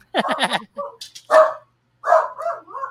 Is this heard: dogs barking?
yes